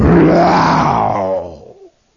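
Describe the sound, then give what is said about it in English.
A voice imitates a truck roaring past with a loud, rough growl that swells and then fades out over about two seconds, like a vehicle rushing by and disappearing. “And sure enough, out of the darkness, he sees this great hurtling, unmarked truck that just roars down out of the darkness and”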